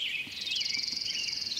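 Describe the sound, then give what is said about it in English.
A high, rapid descending trill of an orange-crowned warbler runs steadily through the whole moment, clear, with faint background song of robins beneath it and no talking. “There's the descending trill of an orange-crowned warbler against a backdrop of robins.”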